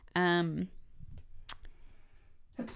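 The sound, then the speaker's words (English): A single loud sneeze bursts out with a sharp voiced blast, followed by a brief crackle of noise and quiet rustling afterward. “Bless you.”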